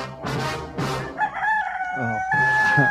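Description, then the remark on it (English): A rooster crows loudly, a long drawn-out call with a strained, tonal quality, preceded by a couple of harsh bursts and sustained for most of the few seconds. “Yeah, can you override that chicken?”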